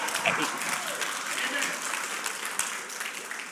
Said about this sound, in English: I didn't get a hand clap on that. Amen.